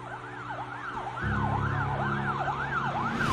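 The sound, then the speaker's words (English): A police cruiser's siren wails in rapid rising-and-falling sweeps, loud, while a low engine rumble swells partway through as the cruiser peels out from a gas station across an intersection and rushes nearer. “Followed by the scream of a siren, a cascade of red and blue lights reflected off the windows of my car and the shops around me.”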